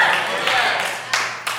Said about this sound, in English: I love those little patty cake golf claps in the church when God is saying the whole point of me sending you there was to show you what I am about to give you.